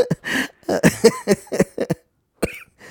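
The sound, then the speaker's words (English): A person coughs without covering their mouth, right in someone's face: a string of loud, open coughs in rapid succession, harsh and unmuffled, then a short pause before one last cough. “Yeah, just cough right in my face. Don't cover it at all.”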